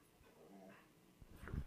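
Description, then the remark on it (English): A dog whimpers softly in a thin, wavering whine, then gives a short, sharp snort near the end. Quiet, with no talking. “The dog's doing this.”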